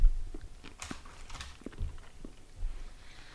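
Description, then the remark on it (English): Crunchy chewing of a nutty dark milk almond chocolate, with irregular bites and brittle cracks scattered over a few seconds and no talking. “We're chewing.”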